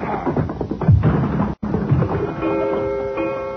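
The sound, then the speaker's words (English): A coyote is hit so hard that it slams into a wall with a loud, rumbling crash and clattering thuds, a sudden brief cut, then more tumbling noise and sustained ringing tones as a clock comes crashing down. “You hit that coyote so hard, he bang up against the wall and he knocked the clock down.”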